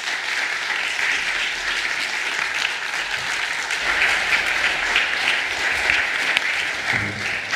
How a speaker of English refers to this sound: Let's welcome Jeff with our applause.